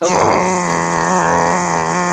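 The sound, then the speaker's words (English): A voice imitates an Xbox 360 console's noise with a steady, droning hum, loud and unbroken for about two seconds, layered with buzzing harmonics like a whirring fan. “That's why I like using the 360. It's some nice background white noise that helps me sleep while I play video games.”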